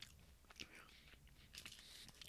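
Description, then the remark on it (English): Crunching and chewing on a crisp snack, with several sharp bites and irregular mouth sounds over about two seconds, with no talking. “I know Oliver's really big into the sound of us eating chewing on the podcast.”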